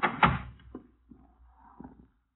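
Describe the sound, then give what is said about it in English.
A door thuds shut with a sharp knock, followed by a few softer creaks and bumps as it settles, then quiet. “This door.”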